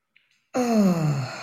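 A faint, brief intake of breath, then a long, audible exhale that turns into a voiced sigh, its pitch sliding steadily downward, taken as a deep breath with eyes shut to release tension. No one speaks.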